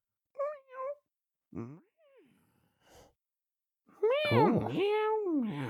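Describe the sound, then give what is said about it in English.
A person imitates a cat: a few short, quiet mewing chirps, then a long, loud, wavering meow that rises and falls, with no talking around it. “Yeah, because I would try and channel just the sheer scale of Doha Airport into the cat's behaviour, into its noises. It'd be more like...”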